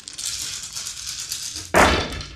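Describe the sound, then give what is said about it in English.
A handful of 11 dice rattle and clatter steadily for over a second, then spill out in a sudden loud burst of clicking and tumbling. No one speaks. “Her personal pool is now empty, by the way, but she's going to be rolling 11 dice.”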